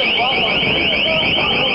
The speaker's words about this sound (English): Pittsburgh used what's called a long-range acoustic device for loudspeaker dispersal orders, followed up by high-frequency, potentially painful audio chirps.